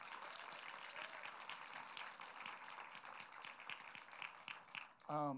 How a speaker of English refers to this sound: In fact, would you do me a favor? Would you give them a huge round of applause?